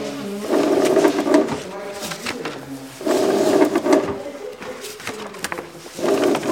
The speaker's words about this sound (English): And just this is also that one person can run neat stacks of ballots through the tabulating machine.